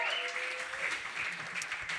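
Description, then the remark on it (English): An audience at a Brooklyn Poets open mic reading claps for the open mic readers, a dense, continuous patter of many hands that holds at a fairly even level for the whole stretch, with a brief tonal ring fading out early on. “Let's give another round of applause for all of our open mic readers.”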